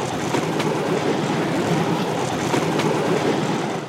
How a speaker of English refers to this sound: when suddenly I encounter an oncoming train. Uh-oh, we're gonna die.